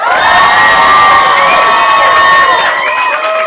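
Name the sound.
audience applause and cheering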